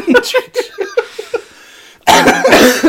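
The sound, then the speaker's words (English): A person coughs in a quick run of short, rasping hacks, pauses briefly, then breaks into a louder, harsher fit of coughing. “See? Coughing.”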